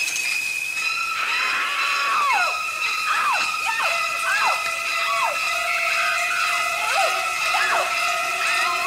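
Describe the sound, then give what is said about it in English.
Shrieking high strings from the music of a horror film's shower scene stab repeatedly in sharp sliding screeches over sustained piercing held notes, loud and relentless for several seconds in a frantic, jabbing rhythm. “Oh, the music behind it, yeah.”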